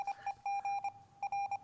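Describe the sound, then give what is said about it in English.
A 6-hour timer is started, its electronic beeps sounding in quick bursts, short pips mixed with a few longer tones, in a clear, steady pattern with no talking. “All right, let's start that 6-hour timer.”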